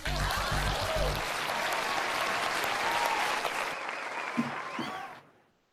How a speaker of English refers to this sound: We're making a podcast. Please clap.